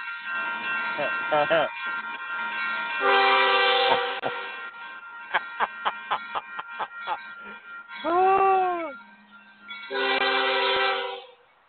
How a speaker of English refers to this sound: As 98% of the people just looked out their car or their window saying, where the fuck's the train?